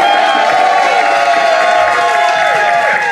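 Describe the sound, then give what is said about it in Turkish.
A crowd applauds and cheers a guest musician loudly and steadily, with bright whistles and whoops rising over dense clapping throughout. “Büyük alkışlarınızı bilen Balkan güzeller.”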